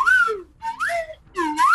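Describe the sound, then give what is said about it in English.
Three short whistled phrases with swooping, rising and falling pitch, like a mouth-whistled imitation of a whistle blown as a signal, loud and alone with brief pauses between. “I pull out the whistle and give him like a”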